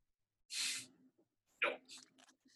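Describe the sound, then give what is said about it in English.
Two quick, hissing squirts from a small Powerade squeeze water bottle: a longer spray burst first, then a shorter one with sputtering bits trailing off, with no one talking. “You have a little Powerade squirt bottle, yeah?”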